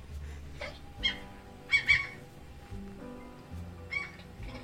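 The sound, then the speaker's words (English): A cat makes a strange, chattering noise, like chattering its teeth: several short, squeaky bursts in an uneven rhythm, fairly quiet, with no talking. “I love that cat noise.”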